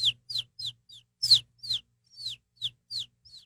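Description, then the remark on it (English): A person imitates a bird call with a quick series of about eleven high, downward-sweeping chirps in a steady rhythm. The chirps are fairly loud, with nothing else in the background. “I wonder what kind of bird that is.”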